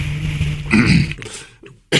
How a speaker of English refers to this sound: Let me clear my throat.